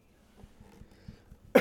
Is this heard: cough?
yes